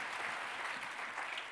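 Steady applause from an audience, a dense wash of many hands clapping at once, sustained and fairly loud throughout with no voices standing out.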